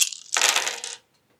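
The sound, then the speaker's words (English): A handful of dice clatter and rattle together for about a second, a bright, busy burst of clicking that stops abruptly, followed by silence. No one speaks. “All those dice are not a six, but I'll push it.”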